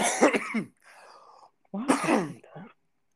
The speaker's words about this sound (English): I'm smoking right now. If you hear me coughing, when don't I?